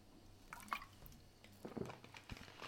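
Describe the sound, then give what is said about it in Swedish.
Someone drinks water on a hot summer day: a few quiet, wet sips and swallows with small liquid clicks, spaced irregularly over a few seconds, with no one talking. “ska dricka lite vatten för det är varmt.”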